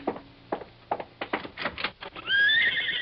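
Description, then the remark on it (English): Hooves clip-clop outside in an uneven rhythm of sharp knocks, then a horse lets out a loud, high, wavering neigh that closes the sequence. No voices accompany the sounds. “Why, yes, that's a horse out there.”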